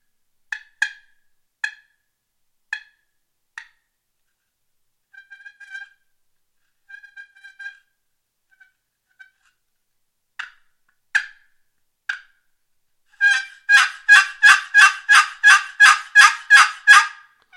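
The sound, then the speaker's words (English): A turkey call device sounds a handful of sharp, spaced clucks, then a few soft purrs, before breaking into a loud, rapid run of yelping notes, clear with no talking. “You can actually, you know, cluck with it, and it's just a nice sound and call.”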